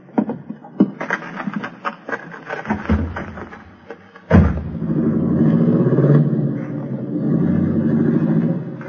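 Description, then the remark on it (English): A car door clunks as people get in to leave, then an engine turns over and catches with a sharp burst, settling into a steady, loud rumble that revs and pulls away. “Let's get in the car and scram.”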